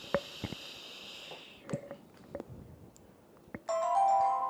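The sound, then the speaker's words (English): Soft scattered taps and clicks of a microphone hitting a phone give way to a bright, loud electronic phone notification tone that rings out steadily through the final second without any talking. “I don't want a notification. Why are you hitting my phone?”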